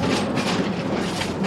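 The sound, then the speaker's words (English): A San Francisco cable car running: a steady, loud rumble of rail noise with rattling, clattering texture throughout, continuous for the whole moment with no voices. “San Francisco cable cars are the best form of public transportation I've ever seen in the entire world.”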